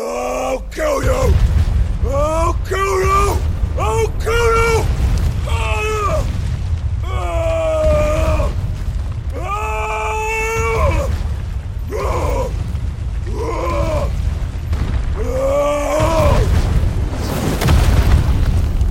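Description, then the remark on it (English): Heavy, deep booming impacts of knees banging over and over onto the ground, shaking it like an earthquake, rumble continuously underneath a series of loud, anguished bellowing cries of pain, intense throughout, with no spoken words. “And he starts just banging onto the ground with his knees.”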